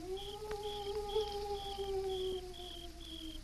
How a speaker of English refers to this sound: The sound seemed to fade away into the deep shadows of tangled mesquite and chaparral, when suddenly it found an echo. An echo that was deeper and more strident, but unmistakably the hoot of another owl.